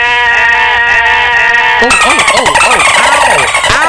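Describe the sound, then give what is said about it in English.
A donkey brays loudly, a steady nasal drone that breaks after a couple of seconds into harsh, wheezing see-saw honks lasting to the end. “A donkey!”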